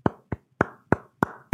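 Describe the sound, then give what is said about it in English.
Six sharp hand claps in a slightly uneven rhythm, each a crisp, bright smack with a short ring, heard alone with no talking, applauding LaMelo winning Rookie of the Year. “I'm applauding. Hope you're applauding too.”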